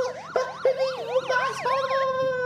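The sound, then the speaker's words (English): A police car siren wails in a rapid, rising-and-falling yelp, loud, cycling quickly over and over with no voices. “We must get him into the police car immediately.”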